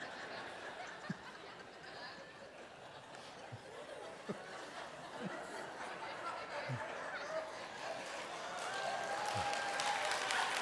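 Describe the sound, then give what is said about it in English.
Thin, scattered applause from a small audience, a handful of hands clapping unevenly with a few chuckles and murmurs mixed in, fairly quiet throughout and swelling slightly near the end. “My granddaughter's clap meant more than that, by the way.”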